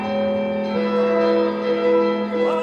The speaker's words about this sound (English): these bells chime and mark his coronation